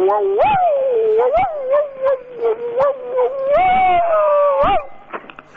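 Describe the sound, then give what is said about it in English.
A man imitates a barking dog, a loud, continuous string of yelping, howling barks with several sharp rising peaks, no other voices. “we're going to have to count the number of barks you bark, because per bark you get a month's free electricity”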